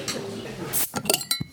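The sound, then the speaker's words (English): Glasses clink together in a toast, a quick cluster of bright knocks and chimes after a soft hiss of background noise, with faint voices murmuring. “cheers.”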